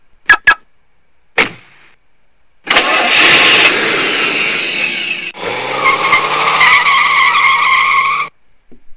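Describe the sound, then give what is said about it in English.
A few sharp clicks and a brief crank lead into a car engine roaring to life, then loud, sustained tire screeching that shifts pitch midway before cutting off, intense with no talking. “Don't jump in a car and drive anywhere on that day.”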